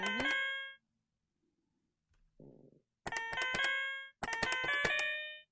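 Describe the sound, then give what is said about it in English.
Electronic quiz buzzers pressed by players during a quiz go off three times, each a bright, ringing chime-like tone of about a second, with a short soft rustle between the first and second; no one speaks. “I buzzed already.”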